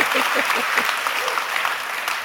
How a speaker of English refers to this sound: Yeah, you're allowed to clap. I mean, it's not going to ruin anything.